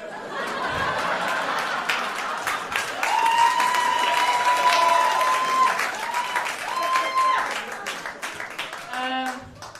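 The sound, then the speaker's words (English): A comedy audience applauds steadily for several seconds after a comedian says he is from Israel: dense clapping with some scattered laughter and whoops mixed in, a few rising whistles riding over the top before it fades. “Never gets too much of a clap.”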